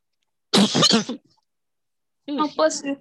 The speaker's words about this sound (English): That was a cough, actually